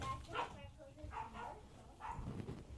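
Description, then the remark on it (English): A dog barks several times, short sharp barks in loose bursts spread across a few seconds, with murmured voices and background noise underneath. “You just gotta wait till the dog starts barking.”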